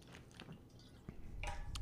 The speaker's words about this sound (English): I'm going to take a quick sip of water.